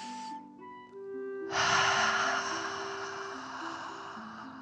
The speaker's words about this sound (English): Again, breathe in through your nose and out through your mouth, pretending you are breathing fire. Deep breath in and out.